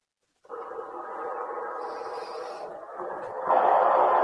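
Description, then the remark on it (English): A white noise machine hisses steadily after a moment of silence, a constant, rushing wash that shifts slightly in tone and grows louder toward the end. No one speaks. “Can you hear that? That's the white noise from the white noise machine.”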